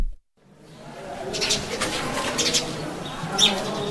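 A small bird calls at a classroom window at Wajir High School while Form 3 students sit their end-of-term exams, over a steady outdoor hum, with soft cooing and a brief sharper chirp toward the end, not loud.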